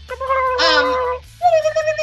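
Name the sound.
turkey gobbling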